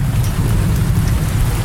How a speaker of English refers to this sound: That's why we're doing thunder during our show from now on. So anytime you hear us, there's going to be this in the background.